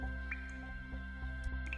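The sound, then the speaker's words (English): Water from a melting snowman drips steadily into a small puddle, several soft plinks and splats landing irregularly over a low, constant background hum. No one speaks. “Then Chili disappeared into a puddle of water.”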